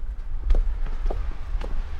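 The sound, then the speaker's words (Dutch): Footsteps descend a set of outdoor stairs from a bunker down to a grass roof, a few firm, evenly spaced steps, over a steady low rumble of wind or outdoor background noise. “En als we nu van de bunker 1 trap naar beneden lopen, dan komen we op een grasdak uit.”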